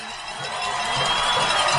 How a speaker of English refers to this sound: You can hear the White County crowd cheering on their defense.